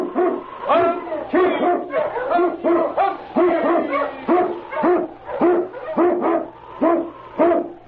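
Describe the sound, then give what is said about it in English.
An Eskimo lead sled dog barks in a rapid, steady series of loud yelping barks, about a dozen in quick succession over a low background hum, opening the radio show The Challenge of the Yukon. “The swiftest, strongest of Eskimo lead dogs blazes the trail through storm and snow for Sergeant Preston as he meets the challenge of the Yukon.”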